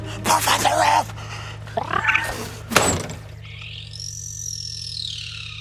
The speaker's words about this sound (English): The greater sooty owl makes a sound like the scary alien poof creatures in an underrated movie called Save Yourselves.